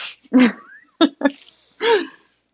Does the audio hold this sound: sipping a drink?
no